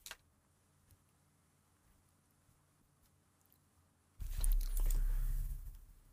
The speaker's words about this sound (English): Then I rolled a 3. Okay. So I roll one dice? Yeah.